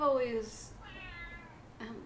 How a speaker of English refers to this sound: meow. You stopped petting her, that's why.